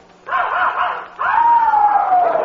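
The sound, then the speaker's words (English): A puppy named Tiger, which has been barking for five hours, barks in two loud, drawn-out yelps, the second longer and sliding downward in pitch like a whining howl. No one speaks. “I mean, he's only a pup.”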